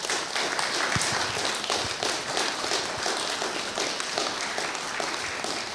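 Sustained applause from an audience thanking women, mothers and grandmothers, a dense wash of many hands clapping steadily and fairly loud throughout, with no pauses and no voices standing out.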